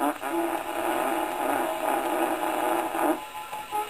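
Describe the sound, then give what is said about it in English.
A drawn-out, buzzy fart by a man, imitating a giraffe standing up, that sputters and wavers steadily for about four seconds, with slight swells in loudness before tapering off at the end. “Fait de la girafe en train de se monter debout.”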